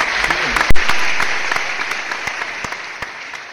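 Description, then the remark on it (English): A crowd applauds tennis player Naomi Osaka, who won the US Open for the second time, steadily, a dense wash of clapping with a few sharper, louder claps standing out, holding for a few seconds and easing off slightly toward the end. “In more positive news, let's give a round of applause to is her name? Naomi Osaka, the tennis player?”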